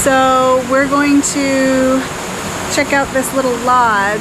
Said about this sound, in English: All right, so here we are. You can probably hear the water rushing behind me. We're not exactly at the waterfall yet, but it just started to rain a little bit.